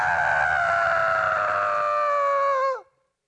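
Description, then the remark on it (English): A person lets out a loud, imitated mourning wail: one long, high, sustained cry held for nearly three seconds that sags in pitch as it breaks off. “He said they were wailing.”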